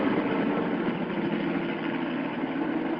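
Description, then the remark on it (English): A helicopter engine idles after touching down, a steady, loud drone with a constant mechanical whir and no breaks for the whole stretch. “And a moment later, the helicopter touched down.”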